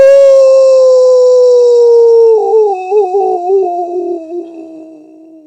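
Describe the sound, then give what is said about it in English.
A voice imitates a wolf's howl: one long, loud, drawn-out tone that slowly sinks in pitch, breaks into a wavering warble partway through, then trails off quietly at the end. “Like a wolf howling.”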